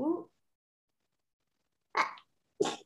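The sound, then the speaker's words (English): A short voiced sound, then a pause, then a sneeze: two sharp, breathy bursts about half a second apart, the second one crisp and hissy. “I have to sneeze.”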